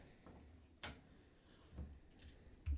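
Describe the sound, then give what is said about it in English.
Faint, evenly spaced clicks, about one per second, three sharp ticks, like a clock ticking softly with no one speaking. “We have no clock. Yeah, we do. There's a couple out there.”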